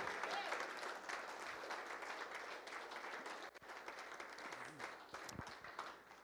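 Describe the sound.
An audience bursts into sustained applause for God, the one who overcomes every trial, a dense wash of many hands clapping steadily for several seconds, with faint voices and cheers mixed into the noise.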